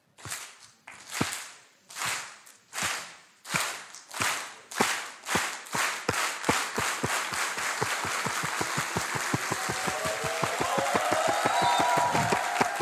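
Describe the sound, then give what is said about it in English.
A crowd claps in unison for a long jumper about to take the long jump at a mock athletics meet, starting with slow, evenly spaced claps that steadily speed up into a fast, driving rhythm, growing fuller and louder with a wash of crowd noise underneath. “And, you know, let's pretend we're at an athletics meet, and I'm a long jumper, and I'm about to take the long jump, and I'm trying to get the crowd on my side, and I'll do it like this.”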